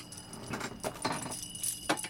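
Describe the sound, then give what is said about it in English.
A tambourine jingles in a few irregular shakes for an improvised Christmas jingle, each a bright, metallic shimmer of small cymbals, moderately loud with no voices over it. “That's a tambourine.”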